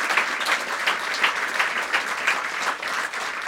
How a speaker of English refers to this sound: So big round of applause to these guys right here. Thank you.